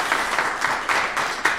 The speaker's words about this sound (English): We will now ask our small live audience for a round of applause for these candidates for bearing with us. Thank you.